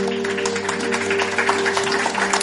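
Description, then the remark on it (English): A crowd claps steadily for the full length at a film screening at Shocktober in Irvington, applauding the film Don't Answer the Door. It is a dense, even wash of applause with no voices, over a faint constant electrical hum. “Another round of applause for Don't Answer the Door.”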